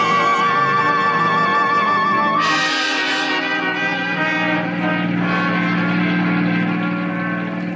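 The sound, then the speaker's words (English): A car cruising along a suburban highway on a Saturday afternoon, its engine a steady, low droning hum that settles in after a few seconds of sustained, wavering tones. No one speaks. “Cruising in a car on a suburban highway are Curtis Tabor at the wheel and Mrs. Lily Lucas discussing the details of a plot.”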